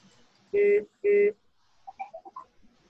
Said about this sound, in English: Oh, I actually thought that was somebody saying beep, beep. There's a carriage backing up outside.